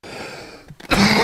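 A man coughs harshly and loudly up close, a short raspy burst after a moment of breathy noise, with no talking.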